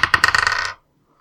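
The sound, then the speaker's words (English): Dice clatter and tumble across a hard surface in a quick burst of bright, hard clicks that speed up and crowd together before stopping abruptly, followed by silence. The dice are rolled for a Thundering Steel spell attack. “So let me roll for that.”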